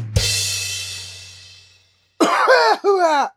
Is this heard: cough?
yes